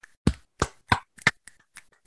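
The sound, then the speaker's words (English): A few people clap briefly for a colleague taking part in the Birkebeiner cross country ski event, a short scattering of sharp, uneven hand claps fading out after a couple of seconds, with no voices. “So let's give some claps up”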